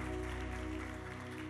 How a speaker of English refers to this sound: Come on, let's just give Jesus a clap offering in this place. Thank you, Jesus.